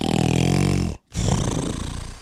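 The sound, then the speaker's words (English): A person imitates snoring with their voice: a loud, rumbling inhale, a brief pause, then a raspy, buzzing exhale, with no other talk. “Yeah, I did provide my own snoring sound effects. I've mastered it.”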